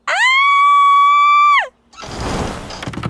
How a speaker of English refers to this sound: Yes, she screamed at the top of her voice too, even louder.